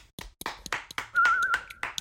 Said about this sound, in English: And it's only a consolation, but we now have our second finalist in this year's Crisp Battle. Round of applause.